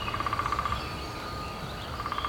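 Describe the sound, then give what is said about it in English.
Songbirds singing at dawn on a Sunday morning in Washington, D.C., during spring migration: a quick run of repeated high trilling notes at the start and again at the end, fairly quiet over a steady low rumble of traffic. “Billions of birds head north during spring migration to nest and breed, and you can find them even in the densest of cities.”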